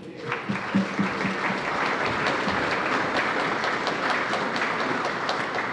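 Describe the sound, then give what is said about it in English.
A festival audience breaks into sustained, steady applause for the Yarra City Council and partners, a dense wash of clapping hands at an even loudness that holds for several seconds, with a few brief vocal sounds early on. “Please join me with a huge round of applause for them.”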